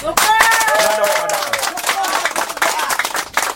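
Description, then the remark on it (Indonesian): A crowd claps in a dense, steady burst of applause lasting several seconds, with a voice calling out over the clapping at the start. “Tepukkan kepada.”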